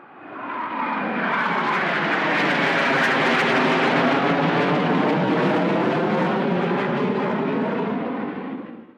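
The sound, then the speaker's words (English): A fighter plane's engine roars loudly and steadily, swelling up quickly, holding a dense rumbling drone for several seconds, then fading away as it passes. No voices are heard. “His job was to fly airplanes off huge ships called aircraft carriers.”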